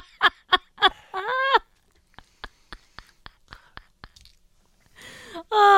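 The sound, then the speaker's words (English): Crisp crunching of someone chewing dry cat food kibble, a steady run of sharp bites, broken up by strained, groaning vocal noises like gagging at the start and end. “I think it's worse because I know it's cat food that I'm kind of gagging in my mouth.”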